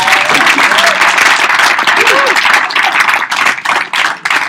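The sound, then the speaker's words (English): A room full of people claps loudly and steadily, dense overlapping applause that keeps going for several seconds before starting to thin out near the end, with faint voices mixed in. “So let's give them a round of applause.”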